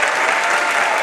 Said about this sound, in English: Why y'all wasn't sure if you should clap?